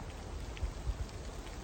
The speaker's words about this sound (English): Rainy, cold, drizzly Thursday. In the woods.